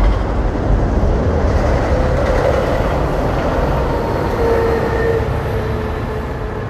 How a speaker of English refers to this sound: Had to wait on that train to go by.